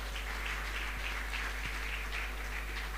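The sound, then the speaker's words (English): A church audience claps for Jesus together in a dense, steady patter of many hands with no clear beat. It sounds fairly soft, with a low hum underneath and no one talking. “Church, clap your hand for Jesus.”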